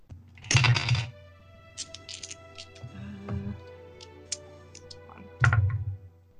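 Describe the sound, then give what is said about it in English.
Dice clatter across a hard tabletop in two loud rattling bursts, one near the start and one near the end, with scattered small clicks and taps between them. No one speaks. The dice are rolled at disadvantage for a Scorching Ray spell in a tabletop role-playing game. “Roll him at disadvantage.”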